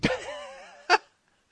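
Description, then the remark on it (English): Dogs let out a wavering, whining cry that slides downward in pitch, then two short, sharp bark-like bursts follow after a brief pause. “this time they were just being lunatics. Okay. Well, this time they were just being dogs.”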